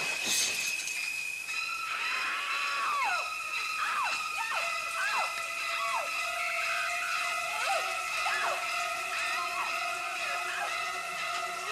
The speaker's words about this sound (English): I chose the Janet Leigh scream in the shower from Psycho.